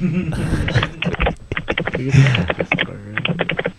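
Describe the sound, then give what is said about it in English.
Rapid clicking of a customer service agent typing up a caller's issue on a computer keyboard, fairly loud, in quick uneven bursts with brief pauses, over a faint murmur of background voices. “Well, just typing that up.”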